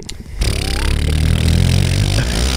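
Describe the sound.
A person imitates a motorboat engine with a loud, sustained lip-buzzing drone that starts abruptly and rumbles steadily for about two seconds, with no talking over it.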